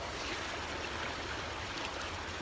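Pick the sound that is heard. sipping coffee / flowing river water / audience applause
flowing river water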